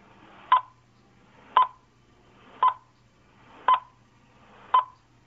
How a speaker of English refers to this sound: So, we're going to stay quiet for, like, the next... I don't know, 8 seconds or so, and then you're going to hear the worst possible spoiler countdown sound effect in recorded podcast history.